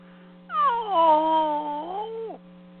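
A dog whimpers in pain: one drawn-out, high, wavering whine lasting about two seconds that dips and then falls away at the end, heard alone over a steady low electrical hum.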